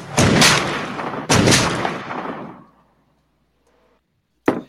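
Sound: gunshot sound effect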